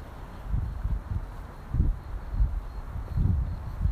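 Gusty night wind rumbles and buffets in low, uneven surges over a soft steady hiss, with no voices present.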